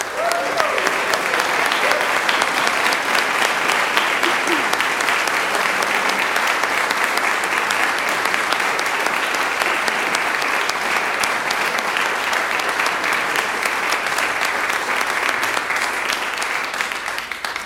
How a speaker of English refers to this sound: Before we have our final prayers and our final carol, can we have a round of applause for the music department and the choirs?